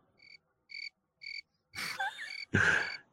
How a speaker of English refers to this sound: Crickets.